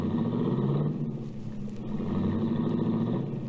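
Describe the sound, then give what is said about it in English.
The engine of a baby blue, right-hand-drive foreign convertible rumbles steadily as the car pulls away into traffic, a continuous low drone with no voices over it. “I watched Cookie's baby blue convertible cut out into the traffic.”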